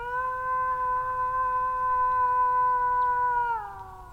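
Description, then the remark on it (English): A person in Germany imitates a wolf howl to draw a wolf out of the forest, with one long, steady, fairly loud note held for several seconds before sliding down and fading at the end, with no other voices. “That's someone trying to draw one out of the forest.”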